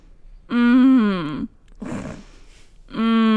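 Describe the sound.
A voice imitates how a sick person snored in the night, making a voice on the exhale instead of snoring: a steady, slightly wavering groan-like tone, then a noisy breath in, then the voiced tone starts again. No words are spoken.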